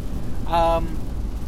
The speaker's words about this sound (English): We are in a car now, so you're going to get the car noise, the standard car noise that you get. As well as rain noise. Yeah, it's apocalyptic out here, mate. Yeah, it's bloody hammering it down.